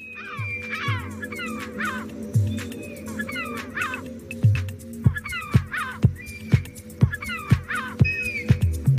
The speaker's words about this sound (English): It works by having some of the cries of birds of prey layered under what is, well, quite a catchy beat, actually. You wouldn't mind that being on the speaker while you had your picnic, but does it actually work?